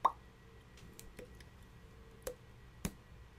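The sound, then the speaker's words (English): Faint trickling water heard as a few sparse drips and plops, four or so soft clicks spaced irregularly over a quiet, low background hum, with no talking. “It's like water trickling in the background.”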